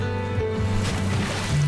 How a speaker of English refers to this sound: Smart boat. Same company. Same guy. He's on a boat. Slowing down. Anchor down.